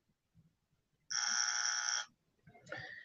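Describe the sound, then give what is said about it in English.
A single loud, harsh buzzer blares steadily for about a second, then cuts off, followed by a short burst of muffled, indistinct sound. “And this deserves a buzzer.”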